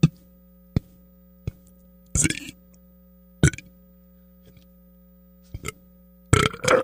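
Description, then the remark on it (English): A couple of loud burps, with short sharp clicks between them over a steady low electrical hum; no one speaks. “When I was younger, I was pretty bummed about not being able to burp on command.”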